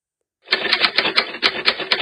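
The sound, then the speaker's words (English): A rapid mechanical typewriter keystroke sound effect, played from a soundboard, clacks steadily after a brief silence: a dense run of sharp, bright clicks at an even rhythm with no voices. “I got to fix this damn soundboard. Anyway. Why is it still typing?”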